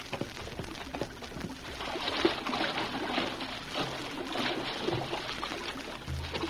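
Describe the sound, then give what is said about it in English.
Water splashes and sloshes for several seconds as a kerosene can, half submerged near a riverbank, is retrieved from a river: a steady, moderately loud churning with a few sharper splashes. “Half submerged in the water near the riverbank.”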